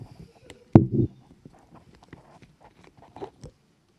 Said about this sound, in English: I'm just going to have a sip now.